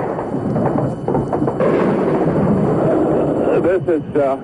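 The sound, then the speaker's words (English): Heavy, continuous rumbling blasts of missile explosions over downtown Baghdad at the opening of Desert Storm, as CNN reporters cover it live, roll together into a loud wall of low booming noise, with a few sharper thuds early on and a brief voice rising over the din near the end. “Missile away!”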